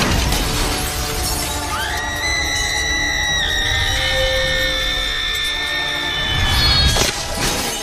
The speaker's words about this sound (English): Oh, We have got to talk about the screams in this movie. The screams are insane. Truly horror level screams.